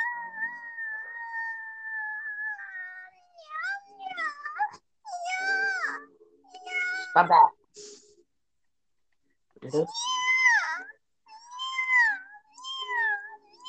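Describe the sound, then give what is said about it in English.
Drawn-out, cat-like wailing with sliding, warbling pitch rises and falls in several loud bursts separated by brief pauses, and a voice speaks briefly between the cries. “Sound like a cat. Sound like a straight up dying cat.”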